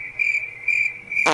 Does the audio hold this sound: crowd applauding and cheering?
no